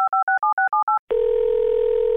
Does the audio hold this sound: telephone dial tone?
yes